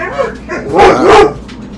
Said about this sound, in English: It's a park full of dogs.